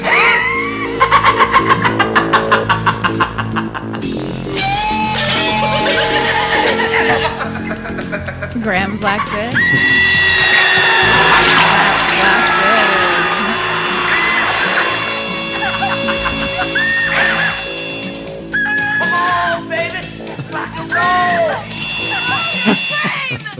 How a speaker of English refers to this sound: That could be nothing other than the guitar drill from Slumber Party Massacre Part 2.